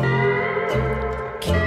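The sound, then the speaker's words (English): A brief blast of loud entrance music with thick sustained tones and a couple of heavy crashing hits, stopping abruptly after under two seconds as it is cut short for time. “Why'd you cut my music early? I was vibing out, man.”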